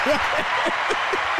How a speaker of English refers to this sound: No, another applause. Press it again.